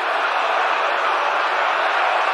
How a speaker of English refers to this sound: That ball is gone. A game-winning home run for Chris Morrell. Can you believe it? Listen to this crowd.